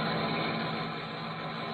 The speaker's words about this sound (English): He and Porky McCoy are in a car, touring slowly through the town, on the lookout for fresh activities of the strikers.